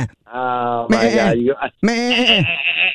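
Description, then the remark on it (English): A person imitates a goat, letting out two loud, wavering bleats, each with a shaky, quavering pitch and a strained nasal edge. “And by the way, that is the worst goat bleat I've ever heard in my life.”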